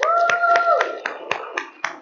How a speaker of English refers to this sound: Let's give Him ample praise for the faithfulness of God in our lives and everything that He's done to this day. Let's give God an amazing hand and praise, a clap offering right now in Jesus' name.